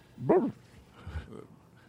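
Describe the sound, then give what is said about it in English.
A person imitates a dog, as if trying to communicate something, giving one loud bark followed by a couple of softer, shorter woofs and whimpery yips, with no other talking. “Try to communicate something to Eric, but all you can do is bark.”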